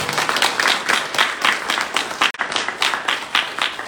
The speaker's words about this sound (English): So let's give one more round of applause.